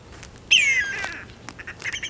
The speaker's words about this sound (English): Did you hear that whistling cry? Right above me is a big brown bird with its wings spread out. It's riding on the thermal columns. That's hot air that's rising up from the ground and into the sky. And that bird is a whistling kite.